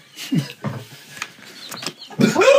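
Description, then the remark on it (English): A man hiccups after eating spicy hot sauce: a series of short, abrupt hiccups, irregularly spaced over a few seconds, ending in a louder, drawn-out voiced gulp. “You're a hiccup man.”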